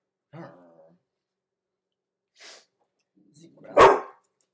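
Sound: puppy barking and whimpering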